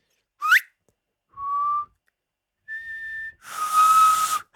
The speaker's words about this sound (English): If we ever do another remix for you, like, please know that those whistle sounds will be a huge part of it.